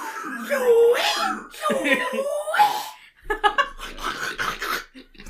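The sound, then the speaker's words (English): A person imitates pig calling noises: two drawn-out, wavering, whiny calls that rise and fall in pitch, followed by a run of short, choppy snorts and grunts, fairly loud throughout. “I start making pig calling noises at him.”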